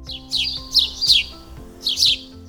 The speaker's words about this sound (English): You know, there's just something about the bird sounds, the beauty of their voices. Some sweet, light, and small wonders. Others louder, heavy, and bossy birds.